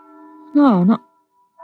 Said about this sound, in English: That's the bell at St. Boniface, isn't it?